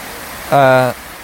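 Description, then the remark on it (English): Heavy rain pours as a steady, dense hiss from start to finish, briefly joined by a short voiced sound from a person partway through. “Alright, I'm going to stop and I'm going to wait for the rain to die down a bit before I keep on playing.”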